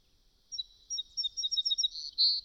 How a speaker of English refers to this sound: Do you detect that bird? Do something useful. Identify. Melospiza melodia, common name, song sparrow.